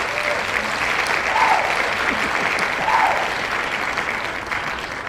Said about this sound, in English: The applause is coming. There it is.